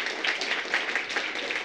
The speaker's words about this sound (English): On that note, one more round of applause for Maryn McKenna.